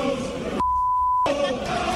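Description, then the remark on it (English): A single steady, high-pitched censor beep lasting well over half a second cuts sharply into a noisy background of chanting Leeds football fans, which resumes right after it ends. “I guess it's beeps, right? It is beeps.”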